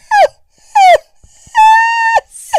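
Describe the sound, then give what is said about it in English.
A person imitates a seagull with loud, nasal, high cries: two short wailing calls that bend downward, then one long sustained squawk, and a brief clipped cry at the end. “You'll never hear another seagull impression ever.”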